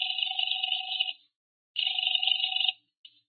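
A telephone rings with a steady electronic trill, two long bursts separated by a pause, then a brief start of a third, heard clearly with no voices, as a caller tries the second of three George Brewster numbers found in a phone book.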